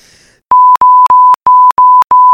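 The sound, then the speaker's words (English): A rapid run of six loud censor bleeps covering cuss words, each a steady pure tone lasting about a third of a second, separated by tiny clicks and gaps, after a brief faint murmur. “I'm going to beep all those out.”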